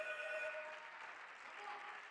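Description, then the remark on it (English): An audience clapping their hands at a morning church service, a dense, steady wash of many overlapping claps with no clear individual beats, with a faint sustained tone underneath at the start. “Come on, clap your hands.”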